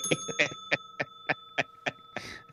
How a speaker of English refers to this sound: Ring the bell, DP.